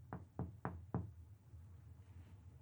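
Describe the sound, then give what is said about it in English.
Four quick, evenly spaced, sharp knocks on wood, followed by a low background hum with no further sound. “I don't want to see my doctor knocking on wood.”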